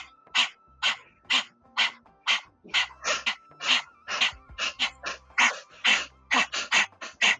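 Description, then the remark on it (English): A person with tongue out imitates a dog's panting as a breath-of-fire breathing exercise, with quick, rhythmic breathy huffs, about three per second, steady for several seconds without any speech. “And you're going to pant like a dog.”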